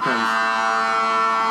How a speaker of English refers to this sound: All right, here we get the Brennan siren.